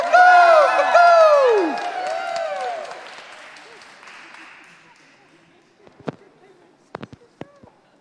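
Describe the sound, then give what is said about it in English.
An audience applauds loudly for "the roosters" in the morning, with high whooping cheers over the clapping. The applause gradually fades, leaving a few scattered, sharp individual claps at the end. “Let's hear it for the roosters this morning.”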